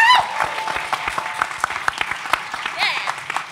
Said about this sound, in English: And finally, it's you, the audience, because I think it's quite simple to say, without you, there would be no show, and there would certainly be no sleep. So I would like you all to give yourselves a big round of applause.